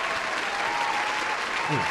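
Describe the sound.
Steady, dense applause from a crowd fills the whole stretch, a continuous wash of clapping at even loudness, with a brief voice rising faintly underneath near the end.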